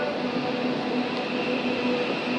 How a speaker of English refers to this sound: Next train here now, platform 4, 1556 to Victoria.